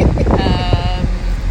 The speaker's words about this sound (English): So we found ourselves on the top deck. Top deck. The top observation deck. Observation deck. And it is windy as you can hear. It's super windy.